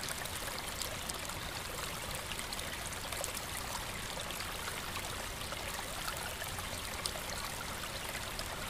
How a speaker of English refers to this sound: The little stream in front of the log trickles and bubbles away, creating a little percussive sound, so delicate, it with its almost musical intonality.